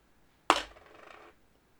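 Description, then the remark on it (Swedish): A die is rolled again across a hard surface during a quiz game and lands on red: one sharp clack, then a brief light rattle that tumbles and fades within a second. Clear, with no talking. “Ja, jag slår tärningen igen här då.”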